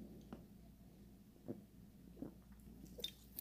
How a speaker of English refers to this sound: Sorry, y'all. Let me take a sip of this sparkling ice. Hold on.